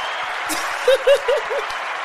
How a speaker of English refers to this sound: Wait, we deserve a round of applause.